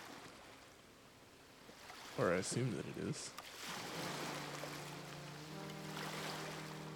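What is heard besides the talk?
ocean waves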